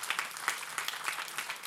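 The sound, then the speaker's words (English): An audience claps together all across the building for God, grateful for his forgiveness, in a dense, steady wash of applause, many hands overlapping with no clear rhythm, fairly soft and continuous throughout without any voices. “If you're grateful for his forgiveness, let's just give him a hand clap all across this building here today.”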